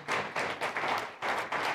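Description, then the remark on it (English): An audience at a church service claps together for the 100 people signed up for the Rooted discipleship journey, in a dense, steady burst of applause, many hands merging into a bright, continuous patter with slight rhythmic swells, fairly loud and with no voices over it. “And then some of you, yeah, you can clap for that too.”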